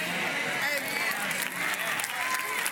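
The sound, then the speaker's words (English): Scattered applause from part of an audience during a sermon, uneven claps steady for a few seconds with murmuring crowd voices mixed in, moderately loud. “See, everybody didn't clap on that.”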